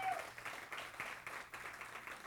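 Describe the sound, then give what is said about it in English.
A church audience applauds Miss Oney with a steady wash of dense clapping that holds at an even, moderate level throughout, with no clear voices on top. “Give Miss Oney a big round of applause.”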